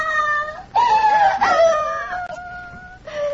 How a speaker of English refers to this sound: Her screams are as regular as the swing of a pendulum, and we can't quiet her. That is why you're here.